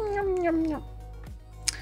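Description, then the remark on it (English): A person's voice imitates a hungry kitten, giving one drawn-out, falling meow, followed by a couple of brief vocal squeaks and a sharp little click near the end. “I sound like one of those kittens that just finally gets wet food.”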